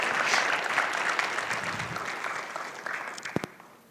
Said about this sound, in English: Come on, let's give her a round of applause. Thank you.